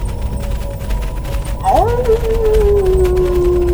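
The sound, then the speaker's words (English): A wolf lets out one long howl partway through, sweeping upward and then holding a steady, slowly falling note to the end over a constant low rumbling background. “I followed your night wolves back to your lair and pinched the key off Agent 11”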